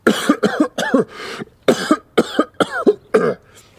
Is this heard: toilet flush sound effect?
no